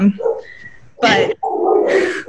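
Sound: dogs barking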